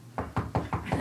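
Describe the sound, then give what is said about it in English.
Five evenly spaced knocks in quick succession, a man rapping with his knuckles to imitate a knock at a door, moderately loud with no talking over them. “And then I hear a knock at the door, but it's like literally him going like this.”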